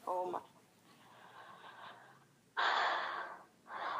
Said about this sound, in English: I'm still struggling to breathe. What's happening there?